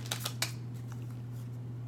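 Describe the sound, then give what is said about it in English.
Tarot cards being shuffled: a few soft, papery snaps close together at the start, then fainter rustling, all quiet over a steady low electrical hum, with no one talking. “I'm gonna finish the shuffle, and let me see.”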